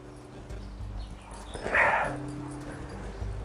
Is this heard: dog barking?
yes